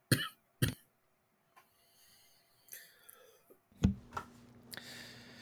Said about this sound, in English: Sorry guys. Sorry. This cough is killing me.